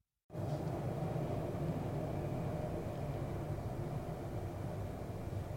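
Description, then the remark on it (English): A heavy, steady rumble of an elevated Brown Line commuter train rolling past, loud and continuous with a broad roar and low mechanical drone that holds throughout, with no one speaking. “we're recording at Ben's, and that was the Brown Line”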